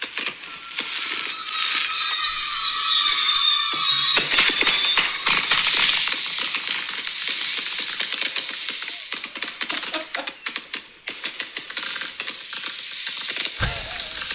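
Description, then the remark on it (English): Gunshots heard outside on the Fourth of July in America crack in rapid, irregular bursts, dozens of sharp pops layered over a steady hiss, with no one talking, and a low thump near the end. “Those are gunshots.”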